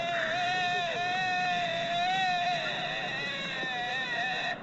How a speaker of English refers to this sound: That sounds quite a bit like what I was saying. And that was a deer.